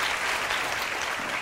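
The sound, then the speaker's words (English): Steady applause from a group for a panelist's comments on advocacy for victim survivors of family violence, dense clapping spread evenly across the moment with no voices rising above it, holding at a constant moderate loudness throughout. “I think we owe that comment, those comments, a round of applause.”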